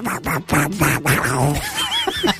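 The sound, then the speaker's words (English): A voice imitates a duck, making a quick run of nasal, buzzy quacks, followed by a few wavering squeaky calls and a bit of snickering. “A duck would be good, wouldn't it? If they ring out and you're going...”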